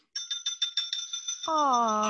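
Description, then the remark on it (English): A bright, high-pitched electronic phone ringtone plays a quick, bouncy melody of repeated pulsing notes, loud and steady; near the end a lower voice comes in over the ringing tune. “So when I lived in Florida with five other roommates, we had this big house, like 6-bedroom house, my ringtone when I lived there was this one.”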